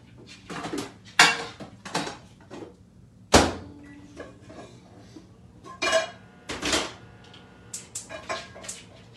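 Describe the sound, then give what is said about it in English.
Clatter as a metal pan is shifted and knocked about on a stove while being heated for cooking, with several sharp clanks and scrapes spread over a few seconds and quieter rustling between them. Faint bird cooing drifts in the background. “So I'm getting the pan hot here.”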